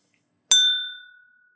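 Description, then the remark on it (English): A single bright clink of glasses touching in a toast with Cull Ela scotch, a sharp strike that leaves a clear, high ringing tone fading away over about a second, with no voices. “So to Bud and to our to the blessing of our meeting again. Cheers. Cheers.”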